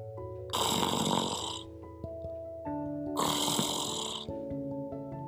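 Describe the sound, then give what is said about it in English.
A man snores loudly twice, each rasping breath lasting about a second, with a steady tonal hum continuing quietly underneath and between the snores. “So one stranger snored and the other sang.”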